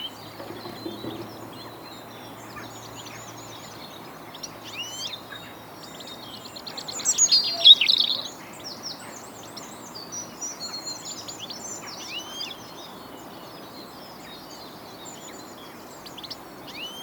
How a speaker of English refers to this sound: Birds are making a lot of sound, making a lot of noise for all sorts of reasons, but the primary thing that birds are doing is communicating and socialising with each other. So lots of what you can hear is actually bird calls.